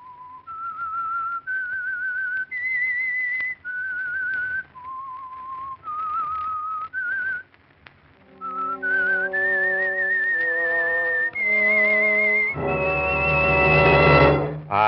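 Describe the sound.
A lone whistler carries the slow, eerie theme melody of The Whistler radio program, presented by the Signal Oil Company, with held, high notes rising and falling, then a full orchestra swells in beneath it, building to a loud, dramatic finish.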